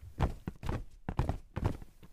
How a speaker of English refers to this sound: The little pebbles crunched under their stomping feet. They marched just as they had on the days before.